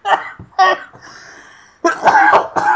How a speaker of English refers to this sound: Oh, sorry, I've still got that cough.